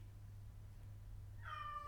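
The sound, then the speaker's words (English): A single cat meow rises near the end over a steady low electrical hum, short and fairly faint, with no voices. “What's this noise? Is that my cat?”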